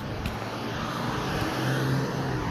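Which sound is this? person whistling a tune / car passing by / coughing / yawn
car passing by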